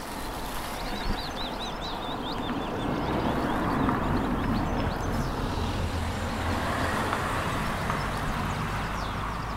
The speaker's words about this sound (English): A Land Rover Discovery towing a trailer up a steep track. A sheep farmer going to tend his sheep.